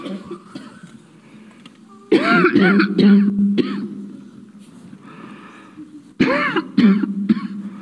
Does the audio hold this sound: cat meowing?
no